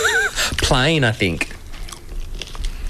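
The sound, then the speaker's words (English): Crisp crunching of potato chips from a bag being chewed, a steady crackly munching that follows a brief voiced, melodic vocal sound. “Oh, nice crunch.”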